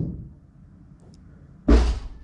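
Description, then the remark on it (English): One heavy thud of a man's fist punching a wall upstairs, a deep, booming knock that fades quickly after a stretch of quiet, with no voices. “There's a guy going off his head upstairs. He's punching walls.”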